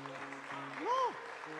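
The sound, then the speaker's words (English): A crowd claps in a steady, dense wash throughout, with low sustained tones beneath it and a short rising-and-falling cry cutting through near the middle. “Clap what I'm saying is a very good thing.”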